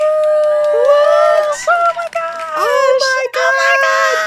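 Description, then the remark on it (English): A crowd screams and cheers loudly in welcome, many high voices overlapping in a dense, sustained roar that swells and briefly dips a few times over several seconds. “It's deafening. The screams.”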